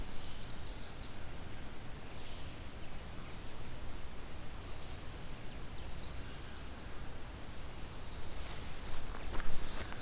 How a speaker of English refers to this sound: Yellow warbler.